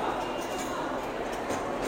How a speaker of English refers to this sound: Nice. There's a train. Nice.